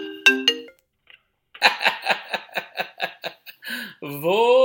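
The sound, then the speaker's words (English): A mobile phone ringtone plays for an incoming scam call from a local 951 number: a few bright electronic tones, then a quick run of evenly pulsing notes, ending on a sustained, rising electronic tone. “Don't be calling my fucking phone.”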